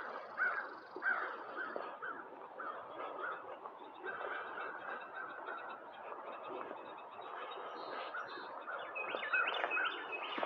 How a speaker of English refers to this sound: It's a crow.